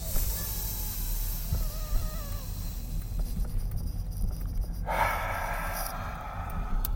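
A long, slow breath drawn in for about four seconds and then pushed out for about four seconds, a steady airy rush over a low rumble, growing brighter and harsher in the last couple of seconds. No one speaks.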